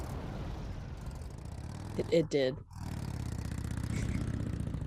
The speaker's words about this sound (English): The snowmobile sounds like? It sounds like a snowblower, actually.